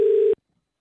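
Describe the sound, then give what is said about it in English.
A single steady telephone line tone, from a call to a restaurant to make a dinner reservation, sounds loudly for about a third of a second, then cuts off abruptly into silence. No voices. “All right, we've got Meat Maiden's phone number.”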